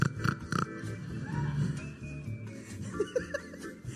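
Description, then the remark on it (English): A person makes loud, pig-like snorting grunts in quick bursts, mixed with laughter and chuckling, with no clear words. “Every time I snort and after I do it, I feel disgusting.”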